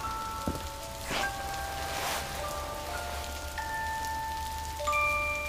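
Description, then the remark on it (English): Steady rain patters down on a hard street surface, a dense hiss with occasional louder splashes, while soft sustained musical tones hover over the downpour. “She comes out, into the rain, and sits next to him on the curb.”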